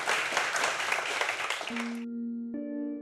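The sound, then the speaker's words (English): An audience applauds a guest at The Interval, the Long Now Foundation's bar in San Francisco, in a dense, steady burst of clapping for about two seconds, then it cuts off as sustained musical tones take over. “So big round of applause for our guest tonight”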